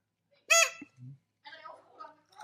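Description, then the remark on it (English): A single loud, harsh crow caw sound effect rings out briefly, followed by a few low thumps and then people talking. “And she put on the crow.”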